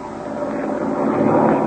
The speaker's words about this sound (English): Just as he was finishing his story, the drone of a plane was heard. Our scene today continues. The plane comes closer, and Captain Midnight commands sharply.